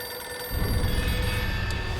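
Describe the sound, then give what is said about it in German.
A payphone in an empty phone booth, alone in blazing sunlight in the American middle of nowhere, rings steadily with a bright, continuous metallic bell tone, starting abruptly and sustained over a low rumbling background, fairly loud. “Aber die Telefonzelle klingelt.”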